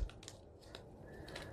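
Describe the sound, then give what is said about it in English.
Quiet paper sounds as a thin magazine page is folded into the center for a simple belly band fold: a few soft, crisp crinkles and taps spaced irregularly, with no one talking. “And I'm just going to fold it into the center.”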